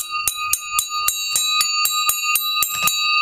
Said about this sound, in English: Holy crap. What was that? This was a scissor I was trying to bang the bell with. It broke.